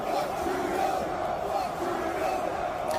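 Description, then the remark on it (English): A large crowd chants in unison at a women's hockey game, a dense, steady roar of many voices with rhythmic swells, loud and continuous throughout. “That chanting is not that somebody edited that in.”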